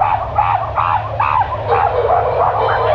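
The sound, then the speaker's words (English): Dogs bark in a rapid, continuous string of yapping bursts, loud, over a steady low background rumble. No one speaks. “We scream, let, you know, the dogs, get the dogs in there. Get the dogs!”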